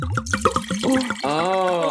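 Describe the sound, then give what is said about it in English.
Red Rioja wine glugs rhythmically from a bottle into a glass, then settles into a steady pour whose ringing tone rises as the glass fills. No talking. “Shall we pour? Here we go.”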